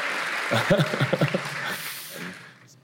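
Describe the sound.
A crowd claps in a steady, dense patter that fades out over about three seconds, with voices briefly rising over it near the start.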